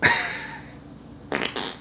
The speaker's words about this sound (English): You farted on them.